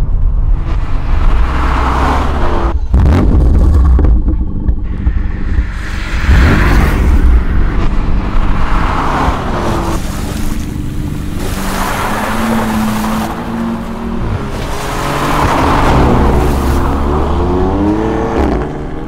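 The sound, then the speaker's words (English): A loud car engine revs up and down repeatedly, its rumbling pitch rising and falling in waves, continuous for the whole stretch with no one talking. “Ride-up in the car, man.”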